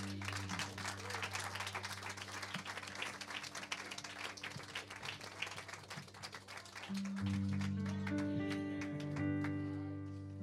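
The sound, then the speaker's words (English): An audience applauds for the Lord in the morning with dense, steady clapping over sustained keyboard chords; the clapping thins out near the end as the held music swells louder. “Another round of applause to Lord Jesus Christ this morning.”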